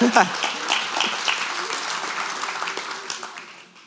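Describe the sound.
A crowd applauds with dense, crackling clapping that stays steady, then gradually thins and fades over a few seconds, with some voices mixed in.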